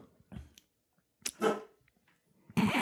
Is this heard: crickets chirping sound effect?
no